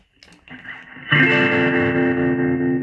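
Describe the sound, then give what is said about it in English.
An electric guitar plays through the vibrato effect built into a Fender Deluxe Reverb pedal, really a tremolo: a few quieter picked notes, then a loud strummed chord that rings out with a steady, wavering pulse in its volume. “And the draw of having the Fender Deluxe Reverb pedal is that you have a vibrato built into it as well.”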